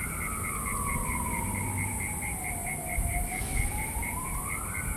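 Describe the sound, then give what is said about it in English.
A police siren passing outside wails in one long, slow sweep, falling in pitch and then rising again, over a steady background hum with a rapid pulsing tone above it. No one speaks. “I'll just wait up and cut that cop shit out.”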